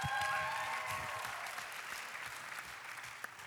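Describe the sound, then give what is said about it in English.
Steady applause from an audience welcoming a singer fills the whole stretch, a dense wash of clapping that starts loud and eases off slightly toward the end, with a faint tonal ring near the start. “She's the only one who needs a clap. You don't need to clap for the rest of us.”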